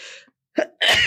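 a sneeze

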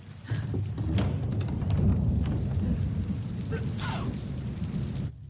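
rain falling

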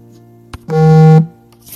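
mobile phone ringing

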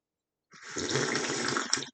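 sipping coffee

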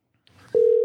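telephone call being placed

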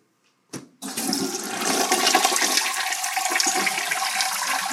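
toilet flush sound effect

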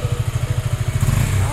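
motorcycle engine idling

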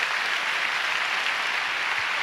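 audience clapping

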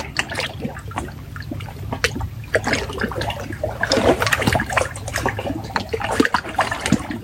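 flowing water trickling

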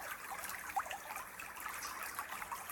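river water trickling

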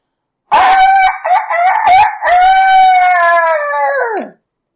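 rooster crowing

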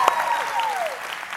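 audience clapping hands

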